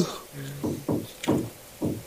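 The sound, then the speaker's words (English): Four dull knocks on a door in an uneven rhythm, moderate in volume, with a faint murmur just before the first one. “Somebody answer the door.”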